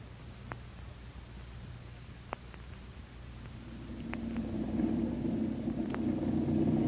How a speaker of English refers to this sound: There they are. Four good planes with their engines warm and filled with gas, we hope.